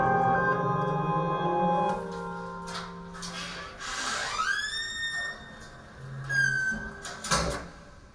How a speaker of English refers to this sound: The door to the room closes on its own accord, plunging the animation into darkness.